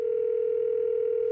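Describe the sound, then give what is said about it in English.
A steady telephone dial tone hums at a constant pitch, ending with a brief, brighter beep-like click as a call is placed to Mark Beeks. “I decided to give Mark Beeks a call.”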